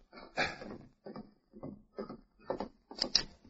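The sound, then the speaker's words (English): Around six hollow wooden raps on the door of a ranch house, spaced unevenly over a few seconds, each a dull, fairly loud thud with no voices over them. “Miller was cleaning and oiling a gun when he heard a rap on the door.”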